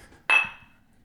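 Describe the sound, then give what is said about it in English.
A single bright clink of glasses touching in a toast, fairly loud, with a clear ringing tone that fades out over about half a second. No one speaks. “Let's take a smell. Yeah, cheers.”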